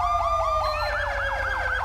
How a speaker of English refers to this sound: These are the sirens, by the way.